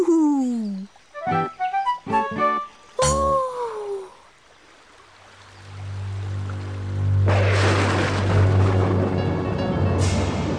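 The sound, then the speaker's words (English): A few wavering, high animal-like cries give way to a low, sustained rumble of thunder, then steady, loud rain pours down for the last few seconds. “That night, the lightning crackled and a storm blew down a tree.”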